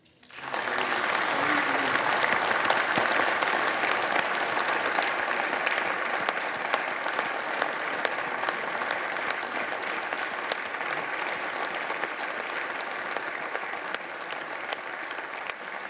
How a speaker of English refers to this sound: You can hear that clap is real. It's from every member of the Senate. It is not. That is not a partisan clap. No, that is not a weak clap. That is a "we still have a country" clap.